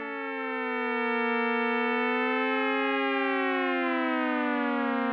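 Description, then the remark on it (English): Several steady synthesizer oscillator tones hum together, each getting a new random pitch every second within a two-octave range, their pitches slowly wandering and sliding past one another, forming a smooth, sustained, siren-like drone that fades in and holds at an even loudness. “You can start to see how this could all add up into a gentle, teeming cluster of tones.”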